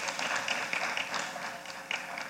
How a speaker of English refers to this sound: We thank God for our friends and kingdom partners at Calvary Chapel, Boynton Beach, and them opening up their doors and being so hospitable to us. Let's give them a hand clap as well.